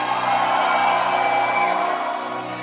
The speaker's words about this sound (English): Is it excitement that I smell? The shouts that I hear, the shouts of excitement.